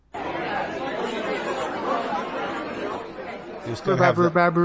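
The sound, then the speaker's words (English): A dense murmur of many voices chattering at once, steady and fairly loud: a party crowd sound effect. Near the end a few brighter, clearer voice bursts rise above the hubbub. “Well, I always have the party crowd sound.”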